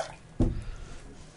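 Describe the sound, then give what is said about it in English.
A quick splash of skunked beer dumped into a dump bucket, one sudden gush that fades into a faint trickle, with no voices. “Into the dump bucket it goes.”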